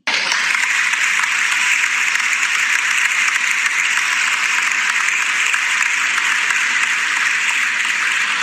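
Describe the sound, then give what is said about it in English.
Steady, dense applause from many hands, loud and continuous throughout with no voices, a broad hiss-like wash of claps that neither builds nor fades. “Oh, I guess we could just give each other claps.”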